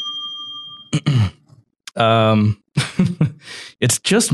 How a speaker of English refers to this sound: Oh, where's my bell? Ring a bell for me.